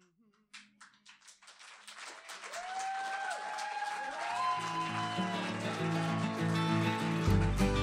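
An audience claps, starting from a few scattered claps and swelling into steady applause, with whoops and tonal cheering rising over it and music building underneath toward the end.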